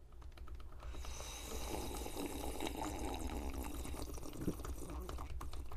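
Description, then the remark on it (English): A long, drawn-out slurp of tea from a cup, airy and hissing, holding steady for several seconds without a break. No one speaks over it. “You sipped longer, stronger”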